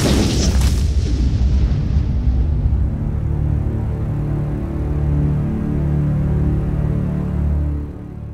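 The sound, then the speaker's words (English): A single massive explosion erupts with a sharp, crackling blast, then settles into a deep, rolling rumble that lingers for several seconds before tapering off. No one speaks. “this thing just smashes down on it, and there's a giant explosion.”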